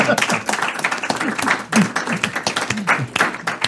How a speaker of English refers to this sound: Our studio audience, let's give a good round of applause.